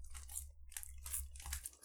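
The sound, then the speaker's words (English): Crunchy food is chewed in a series of crisp, crackling bites, several bursts of bright crunching over a low steady hum, with no talking. “I don't feel so hot after eating these.”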